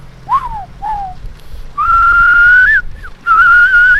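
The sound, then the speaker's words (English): Human whistling imitating a songbird call: two short downward-sliding chirps, then longer warbling tones held at a steady high pitch, fairly loud over the low rumble of a truck. “Being able to communicate with the songbird that sings.”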